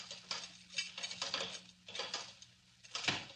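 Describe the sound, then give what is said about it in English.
A door is unlocked and opened: a series of metallic clicks and rattles of a lock mechanism, followed by a fuller clunk as the door swings, with no voices. “Open the door, Kino. Okay, here comes the boss.”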